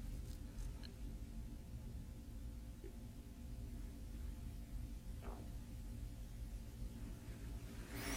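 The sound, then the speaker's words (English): A steady low rumble of traffic drones on for the whole stretch, faint and even, with a brief soft swell partway through and no voices. “Hear the sound of traffic.”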